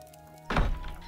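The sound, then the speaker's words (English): After a moment of low hum, a door's bolt is drawn back with a single heavy, dull thunk that rings briefly and fades into a quiet rumble. “Then unbolted the door and bought the pretty bodice lace.”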